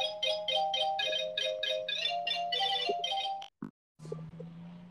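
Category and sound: household object, phone ringtone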